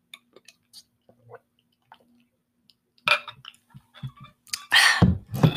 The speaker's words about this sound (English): All right, guys, I am taking a sip of my massive mason jar of iced coffee.